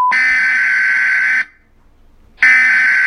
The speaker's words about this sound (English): This is not a test. This is your emergency broadcast system. The following is an official announcement from the United States government.